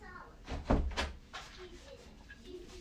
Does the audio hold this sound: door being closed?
yes